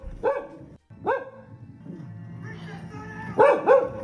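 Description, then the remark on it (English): A dog that has jumped off a sofa to stand in front of a TV barks at horses shown on screen in sharp bursts: two barks near the start, then a quick double bark toward the end, over a low murmur of television sound. “He jumped off the sofa, got in front of the TV, and he's barking at the horses.”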